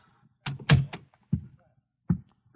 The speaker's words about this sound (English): I got to apartment 1B. I knocked. Then I tried the door. It was open, and I walked in.